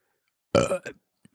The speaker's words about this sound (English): That's the burp of approval. Again, unfiltered. On normal show, a normal episode, I'm not burping like this.